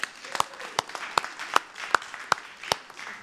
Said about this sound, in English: Let's give her a round of applause, seriously.